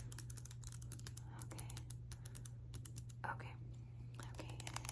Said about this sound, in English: I am now I need to write some equations. I'm gonna do that in pencil because sometimes I mess up. So I'm just going to do that in pencil.